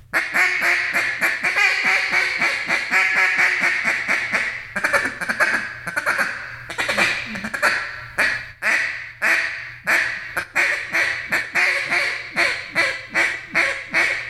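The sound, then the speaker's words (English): A duck call blown in a long, loud run of rapid quacks for calling ducks, the cadence breaking into short, clipped hiccup call notes at the low end toward the finish, with no talking. “I like that hiccup call on the bottom end.”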